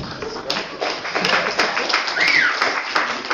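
A crowd applauds a reader of a Bible passage with steady, dense clapping from many hands, sustained for a few seconds at a fairly even level, with a brief high chirp partway through.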